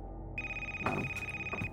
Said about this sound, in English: The phone rings on the table.